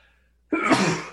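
A single loud sneeze bursts out suddenly after a brief quiet moment, sharp and breathy, with no talking over it.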